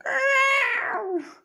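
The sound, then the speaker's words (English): A single drawn-out, wailing cat cry, made by a human voice imitating a yowl, sounding much like a peacock. It starts loud and high, then slides downward and fades over about a second and a half, heard alone. “I mean, that sounds too much like the peacocks. Well, that noise specifically.”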